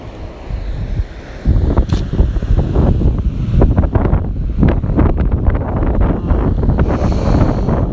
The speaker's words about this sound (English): I don't know if you can hear the ocean.